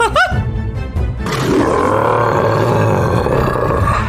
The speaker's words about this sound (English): And who the f*** are you growling at, bottom?